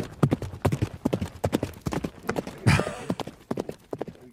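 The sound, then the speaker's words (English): Horse hooves clip-clop in a steady, brisk rhythm of sharp knocks for several seconds, with a brief rougher burst of noise midway and no talking. “You make horse noises.”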